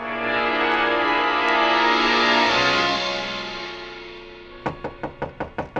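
A sustained musical drone swells and fades, then a quick, even series of about seven loud, sharp knocks by the bellhop rings out on a hotel room door.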